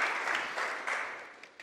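An audience applauds together, a steady dense patter of many hands clapping at moderate loudness, sustained throughout with no speech over it, thanking two people for their community work.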